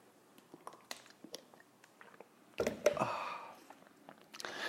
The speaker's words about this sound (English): And join me now for the unparalleled pleasure of the dopamine hit of the day, the second dopamine hit of the day. The thing that's going to make everything a little bit better still. It's a simultaneous sip. Go.